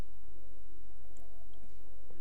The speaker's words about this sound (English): Okay, get another drink of water here. This time of year, I don't know about you guys, but I just get dried out.